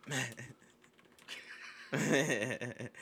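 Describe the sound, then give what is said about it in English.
Quick taps on a computer keyboard clatter as someone types a search, mixed in with people talking over the top, the voices getting louder toward the end. “I'm surprised it didn't come up in the suggested searches like halfway through typing the sentence.”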